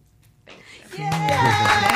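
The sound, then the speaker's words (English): A canned applause track fades in after a brief silence, building into steady, dense clapping with voices cheering over it, loud and sustained to the end. “We got applause. That's we got applause great. Track.”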